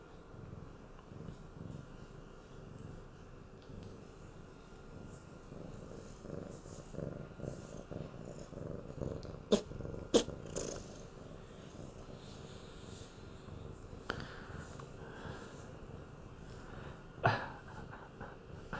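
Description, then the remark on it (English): A cat purrs steadily for the whole stretch, a low, continuous rumbling throb with no voices, broken only by a few brief clicks and soft rustles. “Kitty cat break time.”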